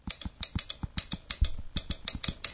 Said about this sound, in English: So the app is called the Hanks, H-A-N-K, or I'm sorry, HANX Writer. And what it is a kind of a word processing sort of program, but it gives you the actual sound of a typewriter, because we've lost that. So it's a, listen.